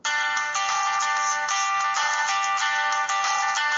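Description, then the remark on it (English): A phone's default alarm tone plays steadily, a bright layered electronic melody with sustained high tones and soft rhythmic pulses, loud and continuous with no talking over it. “I will give you an example of one of the alarms. I mean, would you be able to wake up to this?”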